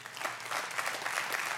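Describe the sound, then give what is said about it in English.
An audience claps together in a dense, steady wash of applause that fills the whole short moment, with no voices over it. “At all of the locations, I hope you hear people here clapping.”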